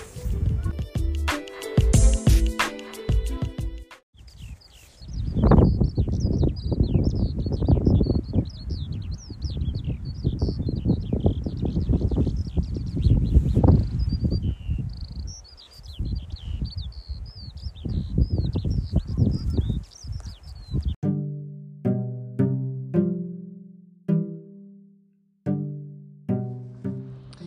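A meadowlark or skylark pours out a continuous, high, rapid warbling song over a loud rushing wind-like roar, with short bursts of music before and after.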